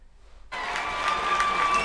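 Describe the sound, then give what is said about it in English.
In Detroit, a crowd in a vote-counting room bursts into loud, sustained cheering and clapping as Republican vote observers are pushed out, after a brief silence, the dense roar holding steady to the end with no clear individual voices. “Here is in Detroit, them cheering as they get pushed out.”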